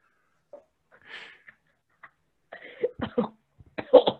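A raspy, wheezy breath is followed by a rapid cluster of harsh, close-up coughs that grow louder toward the end, with no talking.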